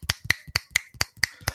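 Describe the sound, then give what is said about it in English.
A quick, steady run of about seven finger snaps, each a crisp, bright click spaced evenly apart, with no voices underneath. “It sort of like wibbles and wobbles a little bit, like awkwardly, and then it wibbles and wobbles some more, and then you hear snapping.”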